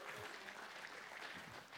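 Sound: audience hand clapping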